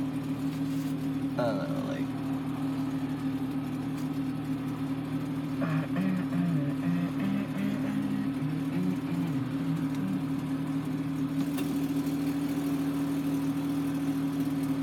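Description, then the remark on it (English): A car engine idles steadily with a deep, loud exhaust rumble droning throughout, while a voice murmurs faintly beneath it for a few seconds. The exhaust pipe has disconnected from the exhaust manifold, making the exhaust loud. “I think my exhaust pipe disconnected from my exhaust manifold. That's why my exhaust is so loud. It's all like rumbling.”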